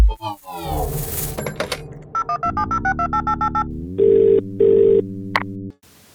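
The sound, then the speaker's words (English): A rapid series of short electronic beeps, like a number being dialed, gives way to two steady buzzing telephone rings, then a click and silence as an answering machine picks up a call to Athens 441. “Thank you for calling Athens 441. No one is available now. You've reached our answering machine.”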